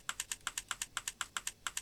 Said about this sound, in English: You will hear a typing sound when a message is being composed.